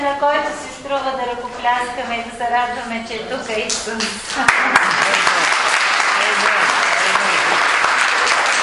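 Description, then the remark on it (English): A man talks for a few seconds, then an audience breaks into loud, steady applause, a dense wash of many hands clapping that continues without fading to the end. “The only one worth clapping is Jesus, alright?”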